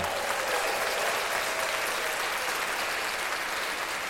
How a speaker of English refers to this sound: Oh, yeah, she's going hard. Clap that up.